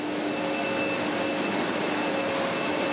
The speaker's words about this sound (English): The loud noise that you're hearing is the extruder. It's this big machine that produces plastic bags. On one side, they pour in small plastic pellets and some other secret ingredients, and then the machine presses them into large stretches of foil.